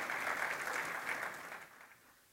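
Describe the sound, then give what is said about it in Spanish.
A church audience claps together for Christ in a dense, steady burst of applause that holds strong for about a second and a half, then gradually fades and thins out. “Que se oiga un aplauso para Cristo, no para mí.”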